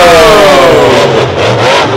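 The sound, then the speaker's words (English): A big truck engine revs loudly, its roaring pitch sliding downward as it strains, filling a couple of seconds with a dense, growling drone and no talking. Two trucks, Hog Destroyer and Laffy Taffy, are going up against each other. “What truck is that?”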